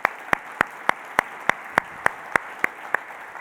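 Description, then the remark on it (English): An audience applauds a team whose members were asked to stand: a steady, evenly spaced run of about a dozen sharp claps, roughly three per second, with no one speaking. “All right, give these guys a round of applause over there.”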